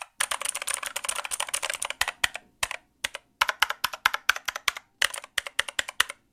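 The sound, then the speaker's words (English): Rapid typing on a mechanical keyboard played to a microphone, a dense flurry of clacky keystrokes that breaks into shorter bursts and separate sharp clicks, with no one speaking. “I'm gonna play it to the mic just because we always say, you know, don't trust these recordings. And maybe you can play yours. Same keyboard, same switches”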